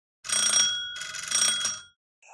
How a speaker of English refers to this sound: There's a gate in front of the door. It's like a gated front yard. Is it locked? There's a bell, though. Cool. I'm going to ring the bell, I guess.